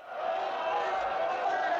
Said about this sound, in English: Vroom X9 is infamous for ironic applause from the crowds. Oh, what does that mean? They don't like us. So they're clapping and they don't mean it. Ironic.